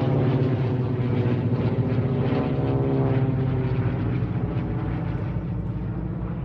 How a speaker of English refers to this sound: We'll do a missing man formation, which is when the planes fly in formation and one plane leaves the pack of planes and goes off and puts smoke out the back, and it's to represent that the plane that went down.